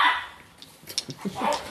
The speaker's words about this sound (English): Who brought the dog?